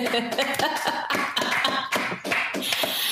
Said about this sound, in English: Are those four hands clapping? I'm clapping my feet. Don't worry. In post-production, we'll make it sound like an entire audience of people.